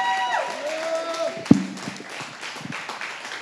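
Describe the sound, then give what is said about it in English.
An audience claps and applauds the pastor for the sermon in a steady, dense patter, with sustained keyboard tones at the start and a single sharp thump partway through. “Give a huge round of applause to Pastor Gwen today for this word.”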